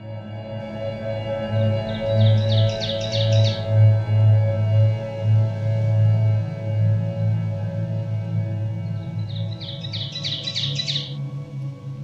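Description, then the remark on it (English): Song of an ovenbird, a drab, thrush-like warbler: two bouts of rapidly repeated, ringing two-note phrases that build in loudness, with a long pause between them, over a steady low droning hum. “The ovenbird is a drab, thrush-like warbler found in the deep hardwood forests of eastern North America.”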